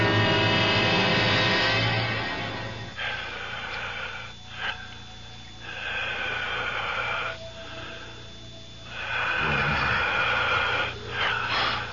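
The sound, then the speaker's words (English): Heavy, wheezing breaths rasp in and out in slow, drawn-out cycles with short pauses between them, as if the whole room is breathing. The sound is loud and no one speaks. “It sounds like the whole room is breathing. I can hear it breathing.”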